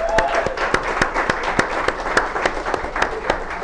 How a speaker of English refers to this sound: So please give a big round of applause first to your favorite priest